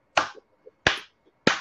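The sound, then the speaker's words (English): Three loud, sharp hand claps from a group clapping to a 1, 2, 1, 2, 3 rhythm during a group laughter activity, evenly spaced about two-thirds of a second apart, each with a brief ringing tail and nothing else in between. “So if you put your hands together, it's clapping to the rhythm of 1, 2, 1, 2, 3.”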